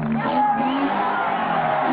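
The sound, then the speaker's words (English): A large crowd at a motorcycle stunt show cheers and applauds loudly throughout, a dense wash of overlapping shouts and whoops mixed into the steady roar. “The crowd smiles and applauds.”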